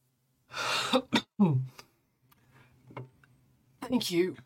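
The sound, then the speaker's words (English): A few rough, breathy coughing bursts, fairly loud, separated by short pauses, with a throaty clearing sound toward the end and faint murmuring in between. “After the coughing stops and the books are like laid out on their little leather wrap all nicely.”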